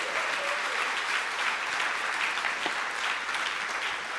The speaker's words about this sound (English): Oh, if you believe him, give him a hand of praise right now.